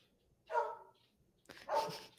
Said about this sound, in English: And sorry that you're hearing my dog in the background